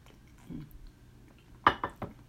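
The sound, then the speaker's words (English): Someone sipping water: a soft faint sound early on, then three quick, distinct gulping or swallowing sounds in a short rhythmic burst, with no talking. “All right, let me take a sip of water.”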